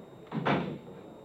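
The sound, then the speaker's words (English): A side door opens and shuts with one quick clunk, followed by a short hollow rumble as it settles, with no voices present. “You better get out of here, Dave. Use the side door, will you?”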